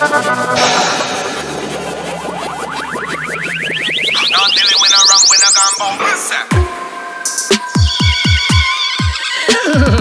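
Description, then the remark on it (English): A horse whinnies loudly in a long, rising, shrill call, then hoofbeats pound in a quick, uneven galloping rhythm, with no talking. “Original galloping horse.”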